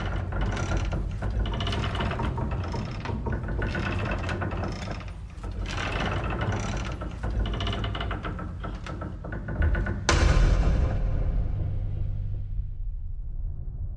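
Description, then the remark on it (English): Creaking, clanking woodshed-like noises in folk horror-style music clatter in dense, uneven bursts over a low droning rumble, then a loud crash at about ten seconds rings out and slowly fades. No one speaks. “The creaking, clanking woodshed noises are kind of equal parts Evil Dead, maybe Evil Dead 2,”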